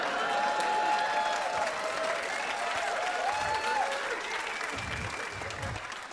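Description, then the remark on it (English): An audience at a poem recitation breaks into sustained cheering and applause, with whoops and shouts riding over dense clapping that stays loud throughout before easing slightly near the end. “See, I was rather afraid that the preemptive cheer would ruin the ending rhyme.”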